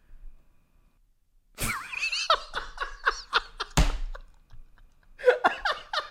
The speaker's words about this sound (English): I just farted when I laughed. I got to make sure to boost the audio there. You can hear it.